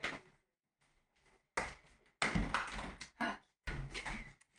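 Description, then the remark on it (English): A door is pushed shut, with a few loud bumps, rattles and scraping noises in quick succession and brief quiet gaps between them. No one speaks. “I'm just going to close the door because there's some background noise.”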